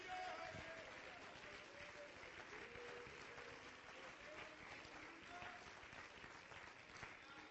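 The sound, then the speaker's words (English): A large crowd claps steadily and densely for several seconds in praise to God, the applause filling the room with a few faint voices and cheers rising underneath. “One more time, clap your hands to a God that's been good to you.”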